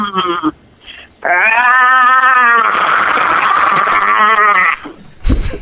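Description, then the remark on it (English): A caller lets out a long, loud, strained war cry, held for several seconds with a wavering, bleat-like rasp, after a couple of short vocal bursts and before a sharp noise at the end. “Let's hear your War Cry, brother.”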